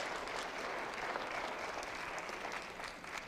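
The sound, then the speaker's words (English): Steady applause from an audience, many hands clapping in a dense, continuous patter at an even level for a few seconds, with no voices standing out. “Come on, clap your hands so you can see this.”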